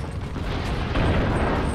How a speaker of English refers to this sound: From the bottom of the valley, the Yorkist cannons opened up. Just as Richard's vanguard engaged the Lancastrians on the hill.